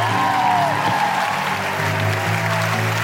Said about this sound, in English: A big round of applause to